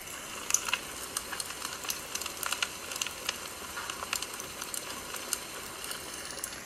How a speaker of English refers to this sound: I got the fireplace going. It's a little gray and rainy today, so I thought we'd just have a little fireside chat here